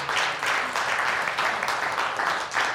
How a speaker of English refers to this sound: We'll clap for you.